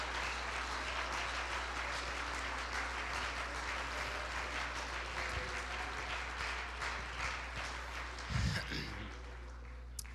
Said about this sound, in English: Come on, somebody clap your hands for just a few moments.